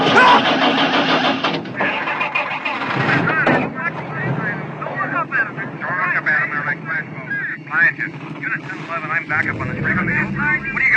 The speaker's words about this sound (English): And then the car kicks in.